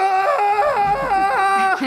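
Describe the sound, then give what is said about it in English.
A shrill, wavering creature scream rings out loud, holding for about two seconds as its pitch slides up and down in uneven swoops, as the creatures try to drill into someone. “Yeah, you see these dudes are just screaming.”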